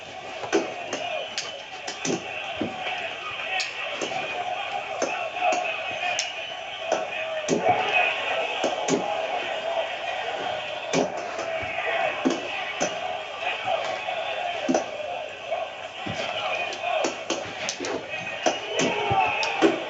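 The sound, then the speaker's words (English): Rapid, irregular punch impacts from a video game fight between an American and a Russian fighter, including right hooks, sharp thuds landing every second or so over a steady hum of game background noise. “Keep punching him.”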